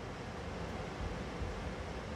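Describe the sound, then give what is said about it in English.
Rain falls in a steady, unbroken hiss that fills the whole clip at an even, fairly soft level, with no voices or distinct drops standing out. “It's been a while since we've all been together in the sound of the rain.”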